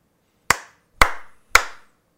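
Three crisp hand slaps and finger snaps in an even, steady rhythm, each a sharp bright crack that quickly rings out, with no talking around them.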